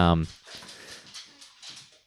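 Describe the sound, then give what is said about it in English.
Dogs bark excitedly, opening with one loud, sharp bark and trailing into a softer, scrappy jumble of yips and whines that rises and falls over a couple of seconds. “The dogs are going nuts, and I'm wondering if someone's at the front door.”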